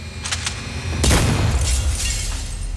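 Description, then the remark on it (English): A man fires a gun through a house window at night, a sudden loud blast with a deep boom and a bright, crashing burst of breaking glass, echoing through the sleeping neighborhood and slowly fading. A few faint, sharp ticks come just before it. “Making a snap decision, he blasts the glass in an explosion that echoes through the sleeping neighborhood.”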